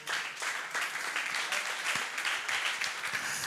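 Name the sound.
audience clapping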